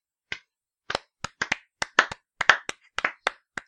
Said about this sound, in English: A record. Can I have a round of applause, please?